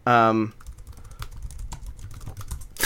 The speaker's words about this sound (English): We're both typing it. We furiously Google Ethel greeting cards.